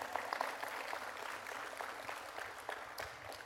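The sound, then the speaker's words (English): An audience claps in a steady, dense burst of applause that holds at a fairly even level for a few seconds, with scattered sharper claps standing out and no voices over it. “You can clap for that.”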